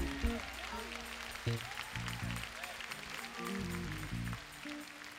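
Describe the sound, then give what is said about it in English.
An audience claps their hands in praise to God in a dense, steady wash of applause, with music playing underneath and voices mixed in. “Clap your hands and give praise to God.”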